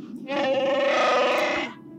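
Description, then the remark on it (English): A TIE fighter engine effect: one loud, wavering, bleat-like screech that holds for about a second and a half, starting abruptly and tapering off, heard alone without talking. “Was that supposed to be a TIE fighter?”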